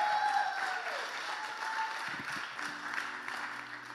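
A crowd applauds steadily, dense clapping holding for the full few seconds, with faint sustained keyboard tones drifting underneath.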